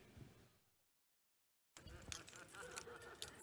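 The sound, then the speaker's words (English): A bunch of Honda car keys with a small red flashlight jangles in a bright, metallic rattle, fading out into a brief silence before a fuller burst of clinking and shuffling noise returns. “Check for your keys.”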